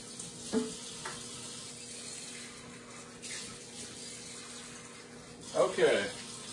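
Hot water runs steadily from a tap into a bowl to thaw a sauce pouch, a continuous hiss with a couple of brief splashy surges, the loudest near the end.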